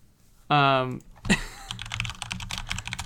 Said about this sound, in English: I hear you typing.